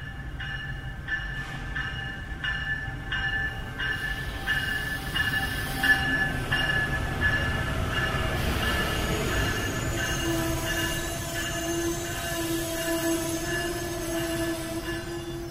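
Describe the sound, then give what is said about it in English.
An Amtrak Silver Star passenger train rolls in to Penn Station, its wheels squealing in long, high metallic tones over a steady low rumble, with faint rhythmic clicks early on as it slows to a stop. “I'm getting off my train, going to my hotel, but I'll be back tomorrow to take the Crescent to New Orleans and have a look around the Moynihan Train Hall before we leave after lunch.”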